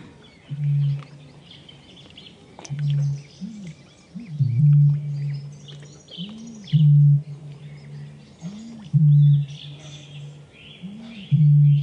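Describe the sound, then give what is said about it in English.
A bittern booms about 40 metres away by a lake, a series of about six deep, resonant hoots, each preceded by a short gulping intake, repeating every couple of seconds while small birds chirp faintly in the background. “Going around the lake, that booming. Yeah, so that bird was very close.”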